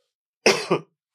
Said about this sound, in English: Those lime chim chips Lays they stuck in my throat. So I may be coughing until that comes out.